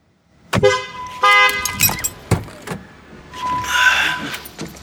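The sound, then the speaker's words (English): A car horn sounds in a few short, loud blasts at a driver who has not moved after the traffic light turned green, mixed with some clunks and traffic noise, followed by a longer, softer honk. “I don't appreciate that beep, sir.”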